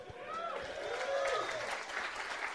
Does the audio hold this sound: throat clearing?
no